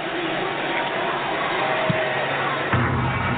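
Steady stadium crowd noise, then a muffled kick followed a moment later by a sharp, gunshot-like crack as an Arkansas kicker's 20-yard field goal attempt strikes the left goal post upright.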